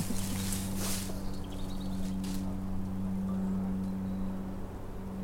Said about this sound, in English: Go away, plane. There's always some man-made noise.